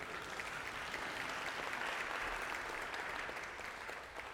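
An audience applauds a reverend steadily, a dense wash of many hands clapping that holds at an even level for about four seconds before easing slightly at the end, with no talking.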